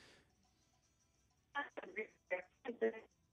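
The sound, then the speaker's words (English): Garbled telephone voice in choppy, narrow-band bursts that keep dropping out, following a stretch of near silence; the words are unintelligible, with a faint steady hum underneath. “I'm sorry, couldn't hear you. What happened to the phone?”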